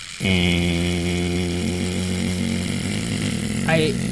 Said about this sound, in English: But part of what makes the game difficult is the timer. True. Which, we have the timer here, and it is possibly the most annoying sound in all of the world.